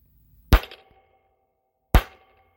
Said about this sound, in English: Go ahead and bang the gavel 3 times for opening arguments.